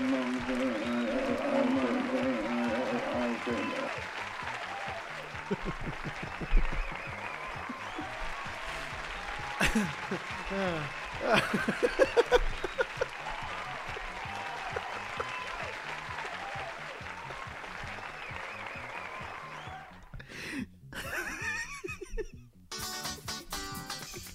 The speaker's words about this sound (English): Get up on your feet. Get on your feet. Get on your feet. Get on your feet to clap. Come on. Get on your feet. Get on your feet. Get on your feet to clap,